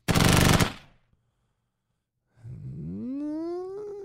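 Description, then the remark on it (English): A short, loud burst of rapid machine gun fire with tightly packed shots, cut off after under a second, then silence before a rising, steady tonal whine. “You want to try to remain more accurate like that person was doing, but we're not going to be responsible with our machine gun, so that one's out.”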